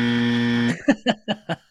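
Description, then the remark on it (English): A harsh game-show wrong-answer buzzer, sounded for a wrong guess in an NFL team trivia game, holds steady for under a second, then breaks into four short descending blips of the same rasping buzz. “give me a buzzer. Wrong again.”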